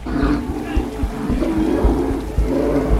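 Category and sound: animal, bear roaring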